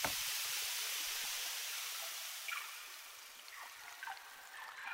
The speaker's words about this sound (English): Here is water. Here is water dripping through rock. Here is water taking its time, taking 26 million years.